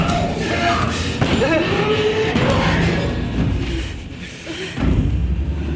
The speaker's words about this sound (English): What's she doing? Sounds like she's hitting herself against something.